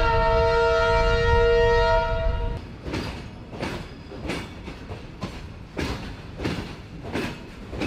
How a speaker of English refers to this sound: And this is where the coal moves through. We are now in Mollem, at the green heart of Goa. A train, 59 carriages long, loaded to the brim with coal, barely covered by tarpaulins, travels through the western ghats or hills.